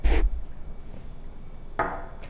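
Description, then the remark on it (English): Glasses clink together in a toast: a sharp bright knock at the start, then quiet, then a second clink followed by a faint high ring. Nobody speaks. “But here, let's start with a drink here. Cheers.”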